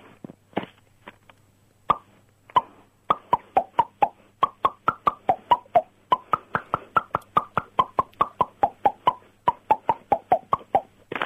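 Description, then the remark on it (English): A quick run of hollow, popping taps on a face, each plop shifting in pitch to pick out a little tune, steady and rhythmic after a few scattered starts, with no talking. “sorry, did you just say the sentence, I can play my face?”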